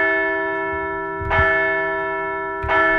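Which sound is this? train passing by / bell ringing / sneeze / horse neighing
bell ringing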